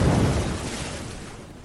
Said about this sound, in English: The fuck was that? Well, the waves. It was the waves.